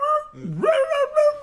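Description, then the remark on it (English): A human voice imitates a dog watching the State of the Union on TV, giving a drawn-out, whiny whimper with a quick rising yip in the middle, fairly loud, about a second and a half long. “No, the interesting part of it, I saw the cat and the dog watching the State of the Union. They was like this.”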